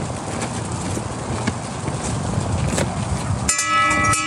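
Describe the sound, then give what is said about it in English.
A dense, steady clatter of noise runs for several seconds, then a bright metallic bell rings out near the end with sustained, shimmering high overtones as a trainee rings it to quit the class. “Ring the bell 3 times.”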